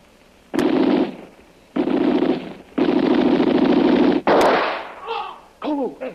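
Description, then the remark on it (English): Two sharp gunshots, fired at a man at a window in the Jungle Jim drama, crack out several seconds apart, with loud, harsh, buzzing bursts between them and a brief wavering, cry-like sound, a man's scream, trailing at the end. “I hear a man scream after you shoot.”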